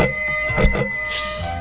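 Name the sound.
bell ringing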